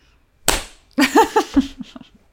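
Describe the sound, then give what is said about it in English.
A single sharp, loud hand clap, made to sync a recording, rings out, followed a half-second later by another crisp smack that runs straight into a short burst of wordless voiced sound. “Maybe we clap, even though it'll probably be off anyway.”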